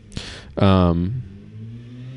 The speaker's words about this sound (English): I wonder what kind of electric scooting device that was that just went by. Is that a motorcycle?